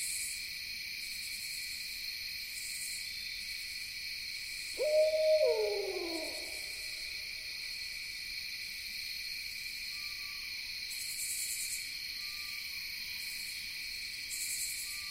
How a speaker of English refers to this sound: Listen, barely audible, the whinnies of a distant eastern screech owl. So exquisite. so sublime.